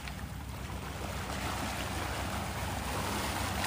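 Ocean water sloshes and laps against a boat in a steady wash of noise, with a faint breeze-like hiss throughout and no voices.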